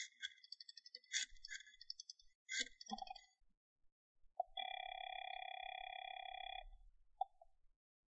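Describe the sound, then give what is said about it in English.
A warbling electronic trill and a few clicks lead into a steady, droning telephone dial tone lasting about two seconds, then a short beep, as a long-distance phone call is placed. It's clear, with no talking. “And it's going to mean a great deal more, I believe, after I make a long-distance phone call.”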